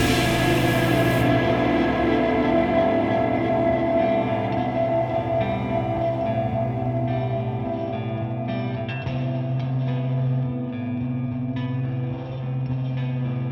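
A train car rolls steadily along the rails, a dense, continuous rumble with droning metallic tones and a slightly echoing, processed quality, holding loud and even throughout with no voices.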